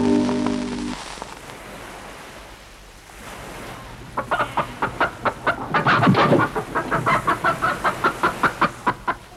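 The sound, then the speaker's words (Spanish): A hen clucks in a rapid, rhythmic series of sharp calls, preceded by a soft rushing background wash and a brief tonal sound at the start. “Felizmente la gallina ha regresado sana y seca.”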